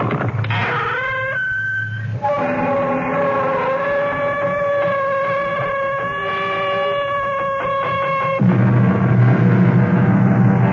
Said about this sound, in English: Conscious all of us are who drive the freeways and the throughways of the behemoth of the road, the tractor-trailer truck. Most of the time we mumble under our breaths at the size of these 30, 40-ton monsters, particularly on wet nights when the rain